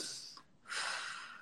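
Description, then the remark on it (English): A voice imitates frightened, shallow breathing: a quick, sharp intake of breath, a brief pause, then a longer, airy gasp. It is fairly loud, with no words spoken. “You'll breathe from here because you're scared.”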